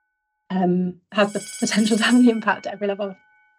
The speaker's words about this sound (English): Oh wow! So we actually have a bell. So, and that's telling us we need to get out. Even the Mulberry and Bigland Green Centre has its own bell. Who would have known it?